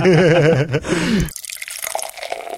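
Hop Chunks cask beer from a just-tapped cask pours into a glass with a warbling gurgle for about a second, then breaks off into a quieter fizzing, crackling settle of foam. No voices.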